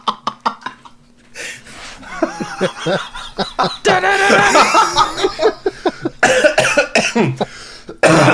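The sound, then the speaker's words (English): Loud laughter breaks into a series of harsh coughs, with snickering chuckles mixed between the rough bursts. No one speaks. “You know, if I laugh until I start coughing, that it's really good.”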